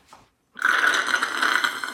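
A loud, drawn-out slurp of liquid from a shot glass, a steady airy sucking noise lasting over a second, preceded by a brief faint sound and a short pause.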